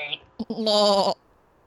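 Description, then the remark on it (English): A person's voice imitates a baby goat's bleat by closing the throat, a short quavering, nasal cry rising after a couple of brief clipped sounds, fairly loud, lasting about half a second. “I sound like a baby goat.”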